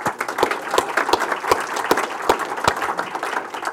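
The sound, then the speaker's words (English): An audience at an Auckland Conversations event applauds itself: steady, dense overlapping clapping with a few sharper individual claps standing out at a regular pace, sustained at an even loudness throughout without any voices. “And while you're in the clapping mode, folks, give yourself a round of applause for showing the passion that you are of good Franklinites, please.”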